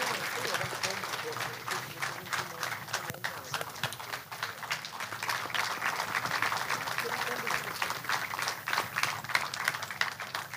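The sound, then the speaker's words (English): A crowd at a gathering in a church applauds steadily throughout as a speaker is welcomed to address them, a dense, continuous wash of many hands clapping at an even loudness with no clear pauses. “Ladies and gentlemen, can you put your hands together as you receive with me”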